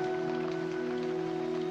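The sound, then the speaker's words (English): Steady rain falls continuously, a soft hiss of drops spread evenly across the moment, with a constant low electrical hum running underneath and no voices. “what is it? The rain.”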